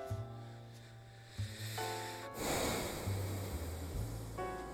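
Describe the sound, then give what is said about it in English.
Heavy, close-miked breathing in ASMR style: loud, rushing exhales that swell into a steady hiss over a low, humming tone, with no talking. “Do you like that breathing ASMR?”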